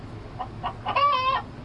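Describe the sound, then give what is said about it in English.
A chicken, brought to a hotel in Puerto Rico, clucks a few short times, then lets out a longer drawn-out squawk, moderately loud over a faint background hum. “Well, sir, you cannot bring that chicken to the hotel.”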